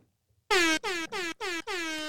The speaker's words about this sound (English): It's called Toot Your Air Horn on Fridays. Toot, toot. The Toot Toots of Love.